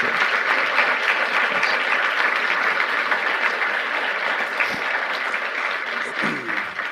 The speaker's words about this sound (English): Give Jason a round of applause and your thanks for doing this.